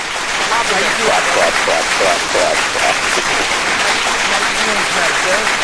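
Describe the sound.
Steady, dense applause for a guest from a band fills the whole stretch, a continuous crackle of many hands clapping at an even loudness, with faint voices woven through it.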